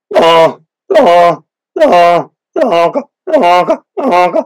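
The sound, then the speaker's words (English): Six drawn-out, honking spit moans blown on a goose call, evenly spaced with short pauses between, fairly loud with no other sounds around them. “I was basically taking my older calls or my flute call, and I was spit moaning.”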